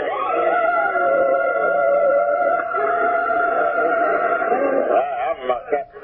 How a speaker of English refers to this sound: Siren. Not a familiar sound in this town.